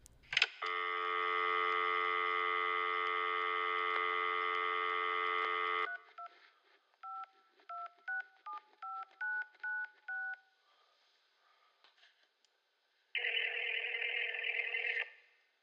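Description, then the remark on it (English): A steady dial tone hums for several seconds, then a quick run of about nine keypad beeps dials a phone number to call a grandmother, followed by a short buzzy ring. No voices are heard. “Go ahead and call her up on the show. Yeah, let me pull the phone up real quick.”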